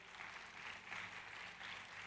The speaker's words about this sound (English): Can we give a clap offering unto Jesus?